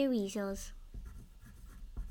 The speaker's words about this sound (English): And if you hear any noise, that's because I'm writing it down the answer so we can read this back.